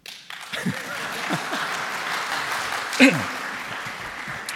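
An audience applauds in a dense, steady wash of many hands clapping for several seconds, with a brief louder swell toward the end and a few faint voices mixed in.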